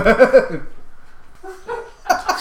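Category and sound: animal, dog barking and whimpering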